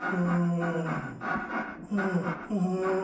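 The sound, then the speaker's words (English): A weird, drawn-out creaking sound wavers up and down in pitch through several strained, groaning strokes, fairly loud and with no one talking over it. “And there's this weird creaking sound.”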